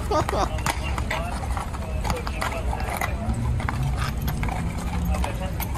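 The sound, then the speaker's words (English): A mounted police horse's hooves clip-clop on a street in a quick, steady rhythm of sharp knocks, fairly loud, over a constant rumbling background with some murmur of voices. “Like, what are you gonna do with your horse?”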